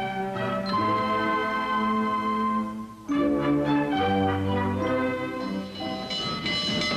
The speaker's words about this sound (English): The one sure way to get someplace is on a train.